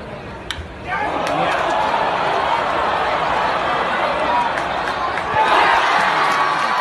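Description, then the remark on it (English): A big baseball stadium crowd in Toronto, recorded on a fan's cell phone about 20 rows up behind home plate, erupts into a sustained roar of cheering after a brief quiet moment as Detroit's Miguel Cabrera hits a home run, holding steady and then swelling louder near the end, with no distinct voices standing out. “Pretty good reaction right there from the road crowd for Miguel Cabrera hitting a home run.”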